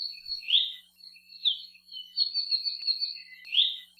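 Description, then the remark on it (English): A non-native songbird in Hawaii's native forests sings a series of bright, high whistled phrases with short pauses between them, clear against a quiet background with no voices. “They're among the few non-native birds that can commonly occur in our native forests”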